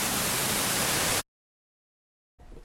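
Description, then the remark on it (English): Ferguson Falls, a waterfall on a side trip off a walking track, roars in a loud, steady hiss-like rush as a large amount of water tips over the top. It cuts abruptly to silence, then returns more faintly near the end. No voices. “Yeah, it's a bit noisy, but they're quite spectacular. And the amount of water that's tipping over the top of Ferguson Falls is just amazing.”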